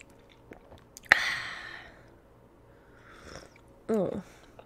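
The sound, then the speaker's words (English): A slurping sip from a cup of coffee, starting with a sharp onset and a drawn-out airy slurp about a second long, then a quieter pause and a brief breathy swallow or exhale. “I'm sitting in the dark with my own thoughts, trying to work out my own shit and just having a cup of coffee. I will now have a sip of.”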